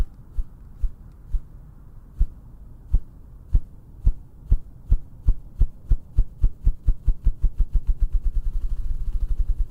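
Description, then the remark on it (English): A ruffed grouse drumming, low-frequency sounds in a recording by Nathaniel H. Taylor from the Cornell Lab of Ornithology's Macaulay Library: deep, muffled thumps begin slowly and spaced apart, then speed up steadily into a rapid, fluttering whir, with no voices. “the low wavelength of the ruffed grouse sounds could keep them safe”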